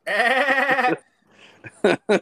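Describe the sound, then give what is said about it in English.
A loud goat scream, a drawn-out, quavering bleat lasting about a second, followed by a brief quiet rustle and two short, sharp vocal bursts. “I was thinking of like a goat scream.”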